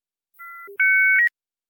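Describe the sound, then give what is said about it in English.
Dial-up modem handshake tones: a steady pair of pitches, a short low hum, then a louder, higher dual tone that shifts briefly before cutting off. No one speaks. “If you forgot what these tones sounded like, then let's play them over one more time.”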